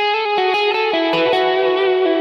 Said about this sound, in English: And then what I'm doing is adding in quite a bit of reverb. What I want you to notice is that it's quite large and it's quite long. Now what I always try and do with my reverb is make sure that it's not louder than my actual signal.